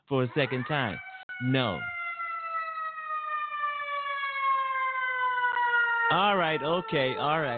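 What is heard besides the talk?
ambulance siren passing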